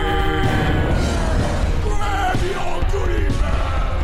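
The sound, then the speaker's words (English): Loud, continuous screaming and yelling from several voices in a played video with karate moves, strained and chaotic, with rough thuds and commotion underneath, filling the whole stretch without a pause. “Lots of screaming and karate moves.”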